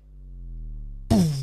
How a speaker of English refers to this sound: I love the sonic bass drop, like the boom.